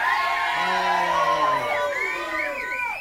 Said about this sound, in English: Hands up who's having a good time. Hey. Give us a cheer if you're having a good time. Hey. Is that a cheer? Come on!